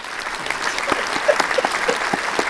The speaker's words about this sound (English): Can I hear a round of applause, everybody?